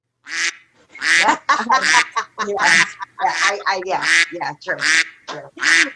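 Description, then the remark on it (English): A duck quacks over and over in quick, uneven bursts, loud, with a dozen or so nasal calls tumbling one after another and barely pausing between them. “She's quacking up.”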